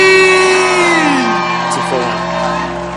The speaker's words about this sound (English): Well, I don't know if you're as excited as I am, but our pastor is back in the house. Our pastor is back in town. I want you to stand to your feet, clap your hands, make a joyful noise unto the Lord, and welcome Bishop Richard Ayi.